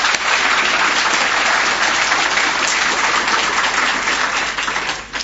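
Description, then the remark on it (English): A conference audience applauds steadily, a dense, sustained wash of many hands clapping, holding loud and even for several seconds before tapering off at the end. “So congratulations for the conference, and I think we should give them a round of applause for that.”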